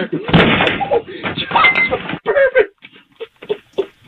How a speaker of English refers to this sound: He crashed right into the front door as he was trying to open the door with a pizza cutter.